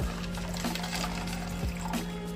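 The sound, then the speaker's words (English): Water pours steadily into a drink mixer holding Dragonade-flavored W Gearless Energy powder, a continuous splashing gurgle lasting a couple of seconds, with a low, constant hum running underneath. “Dump in the water.”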